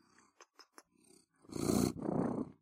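A neighbour's cat on a bed purrs right up against the microphone, sniffing it, a low steady rumble broken by a few soft ticks, then two louder, breathy surges of purring as it presses close.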